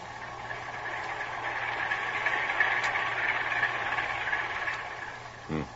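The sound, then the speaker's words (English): A steady, heavy engine drone with a low rumbling hum and faint rhythmic knocking, continuous, from a ship's heavy engines and two propellers churning through the water as it comes toward the listeners. “Heavy engines and 2 propellers.”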